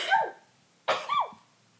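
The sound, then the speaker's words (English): A woman sneezes twice, sharply, about three quarters of a second apart, each a sudden breathy burst trailing into a short, high, squeaky voiced tail, with quiet between them and no talking. “And yes, that is her real sneeze.”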